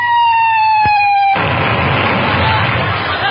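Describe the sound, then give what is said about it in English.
Incoming fire: a steady high whistling tone with a sharp crack partway through, then a sudden loud, sustained roar of rumbling noise that could pass for thunder. “Kids, we're being fired upon.”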